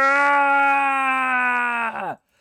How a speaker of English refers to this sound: You gotta scream, right? That's the point.